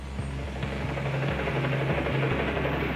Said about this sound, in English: Around 3 p.m, the beat of helicopter blades creates this cacophony inside the jail cells. A helicopter is hovering just above the roof of the prison, right on top of the roof covering the solitary confinement wing.